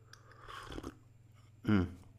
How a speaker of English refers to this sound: Let me just take a sip of my tea.